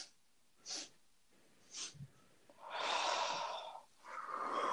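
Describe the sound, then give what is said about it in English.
A voice imitates sniffing the air: two short, sharp sniffs, then longer, heavier snuffling breaths, with no words spoken. “So then he tells you, he sniffs the air once more.”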